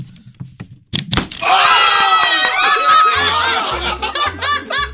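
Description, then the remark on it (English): A balloon bursts with a single sharp, loud pop, instantly followed by a burst of loud, high-pitched laughter and shrieking from several people that continues to the end. “Okay, look, it popped, and it really wasn't that big of a deal.”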